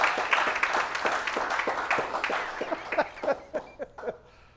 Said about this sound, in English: Yeah, clap. That's a good thing.